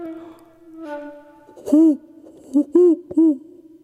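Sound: owl hooting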